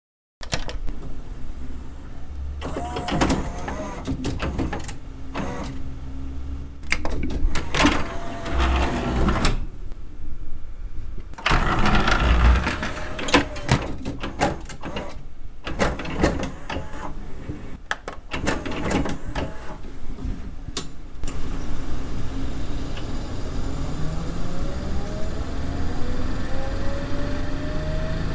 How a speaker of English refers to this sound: The sound of a LaserDisc retracting into the machine and the door flipping up is on par with the quaintness of the crackling of a dial-up modem connecting to America Online.